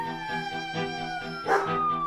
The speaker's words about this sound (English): Come on. Come here, dog. Let's go. Don't be scared. It's just a siren. Don't worry. Don't be scared.